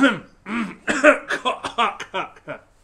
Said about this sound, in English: Excuse me. We really need to get that cough button installed, don't we?